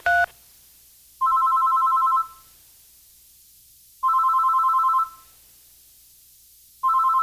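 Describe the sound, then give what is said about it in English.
A telephone rings repeatedly, steady electronic two-tone bursts about a second long separated by regular pauses of silence, clear, after a brief click at the start. No one speaks. “You gotta answer the phone eventually.”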